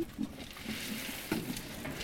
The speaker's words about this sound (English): I love feeding the pigs. There. Look at them. Piggies.